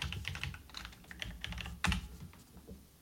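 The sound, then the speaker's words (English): Rapid, irregular clicking of keys on a computer keyboard, fairly quiet, with a slightly louder clack near the end and no voices. “He's typing even more.”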